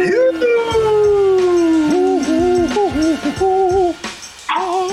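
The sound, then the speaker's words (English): A female dog howls loudly, one long drawn-out howl sliding downward, then wavering, yodeling cries for about four seconds before trailing off. “What's going on with that dog?”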